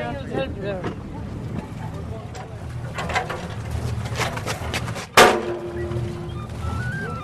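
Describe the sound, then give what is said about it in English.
A ferry carrying passengers and two folding tables rumbles steadily as it comes in to the small quay at Inchigill. Pigeons coo and birds call, a sudden loud bump or hiss cuts through, and faint voices murmur in the background. “The ferry is pulling into the small quay at Inchigill.”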